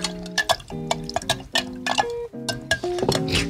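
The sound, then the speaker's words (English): A spoon stirs strawberry simple syrup into sangria in a fruit-filled glass pitcher, clinking against the sides in a quick, uneven series of sharp taps, with faint sloshing and steady musical tones underneath. “So we've got our strawberry simple syrup, and we're going to stir that up.”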